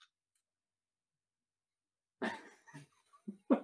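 After a long silence, someone sniffs a glass of hazy IPA beer: a sharp breathy inhale, then several shorter uneven sniffs, fairly loud and with no talking.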